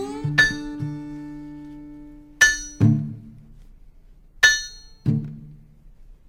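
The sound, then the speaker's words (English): A steel-driving hammer strikes steel on the Virginia road in heavy, ringing clangs, roughly in pairs every couple of seconds, each bright metallic hit leaving a lingering tone, with no voices. “On the Virginia road, I became married to the steel-driving hammer.”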